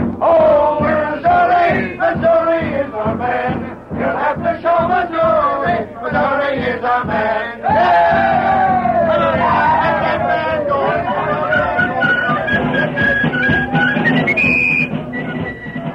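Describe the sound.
A large crowd around bonfires shouting and cheering for Missouri, the new town sheriff, many voices overlapping in a loud, continuous roar that holds steady throughout with rising yells near the end.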